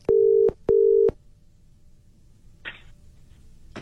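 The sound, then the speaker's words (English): Telephone dialing tones: two steady, low electronic beeps in quick succession, clear and fairly loud, followed by quiet and a brief soft rustle. No voices. “We're dialing your dad now.”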